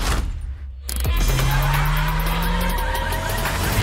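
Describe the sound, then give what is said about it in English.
A car skids with a sustained, whining tire squeal over loud engine and road noise, starting abruptly after a brief quieter moment and holding steady to the end. “all had like car noises and gunfire like mixed into the track.”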